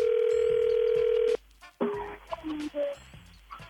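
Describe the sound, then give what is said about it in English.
A telephone ring tone as a call is placed for a phone-check segment on the Party 103.3 morning radio show: one steady, loud tone for just over a second, then a short gap and a click as the line picks up, followed by faint, muffled line sounds. “Time for another phone check.”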